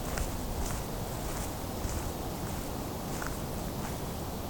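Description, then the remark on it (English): Footsteps crunch steadily over ground at a spruce campground, a soft regular walking rhythm set against a constant wash of ambient noise, with no voices present. “I'm going to walk around a little bit more. It's a campground area.”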